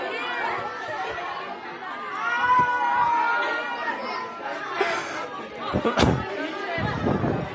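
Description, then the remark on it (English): A group of people told to talk amongst themselves about anything, as a challenge where one person must pick out another's voice, talk over one another in a steady, loud babble of overlapping conversation, with a couple of sharp knocks or thumps near the end. “I want you all to talk amongst yourselves right now about anything.”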